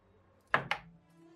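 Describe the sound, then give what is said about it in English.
Two quick, stifled sneezes in rapid succession, each a short, sharp burst of breathy noise that fades fast, with nothing but a faint low hum around them. “Bless you.”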